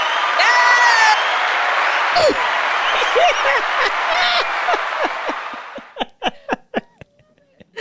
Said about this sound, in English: Where's your little button that says, ha? You need the applause button to go right here.